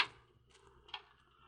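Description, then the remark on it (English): A hospital ward door opens with a sharp latch click, followed a moment later by a second, softer knock. Quiet and otherwise still, with no voices. “You open that door, Mr.”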